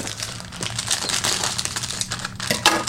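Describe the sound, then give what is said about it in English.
Crinkling and rustling of a plastic package of scone mix being handled and snipped open with scissors, a steady papery crackle with a few sharper clicks, no voices. “So here's the package of scone mix. Get some scissors.”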